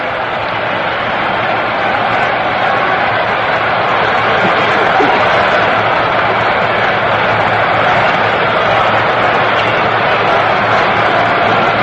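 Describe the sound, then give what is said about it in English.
A large baseball stadium crowd at a Brooklyn versus New York Yankees game cheers and roars continuously, a dense, loud wall of voices that holds steady for the whole stretch with no single voice standing out. “Crowd that was very quiet a few moments ago is really starting to whip it up now.”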